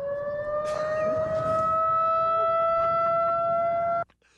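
A loud siren wails in a long, steady tone that climbs slightly in pitch, with rumbling background noise underneath, then cuts off abruptly after about four seconds.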